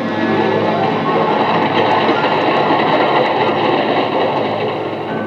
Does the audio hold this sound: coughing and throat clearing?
no